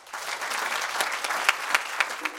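An audience applauds steadily at the end of a book talk and question session, a dense wash of many hands clapping, with a few sharper individual claps standing out near the end.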